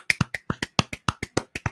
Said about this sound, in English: Let's just stop and have a round of applause.